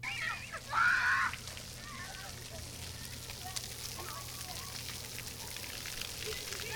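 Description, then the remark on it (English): Water from a splash pad in Williams Park on Detroit's west side sprays in a steady, hissing rush, with a brief louder burst near the start and faint voices mixed into the background. “Nearby, a splash pad sits vacant and dry. On a typical day, you'd be hearing this.”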